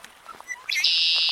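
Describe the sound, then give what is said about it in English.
A male red-winged blackbird sings once, a few soft introductory notes rising into a loud, buzzy trill that holds steady to the end, clear with no talking. “A male red-winged blackbird, they're among the earliest birds to set up territories.”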